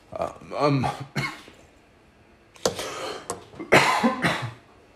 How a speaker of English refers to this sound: Sorry, guys, I don't know what's going on with this coughing spell.